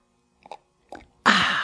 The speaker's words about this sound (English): I'm going to pause here for a dramatic sip of tea. For those interested, it is chaga tea from Four Sigmatic. Decaf.